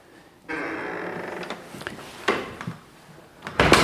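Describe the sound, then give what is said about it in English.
Heavy mahogany doors opening in a historic house, leading from the great central hall into the earlier part of the house built around 1803: a sustained scraping creak as they swing, followed by several solid wooden clunks and a louder thud at the end, with no voices. “Well, I'm leaving behind the great central hall and moving through these great mahogany doors into the earlier part of the house, built in about 1803.”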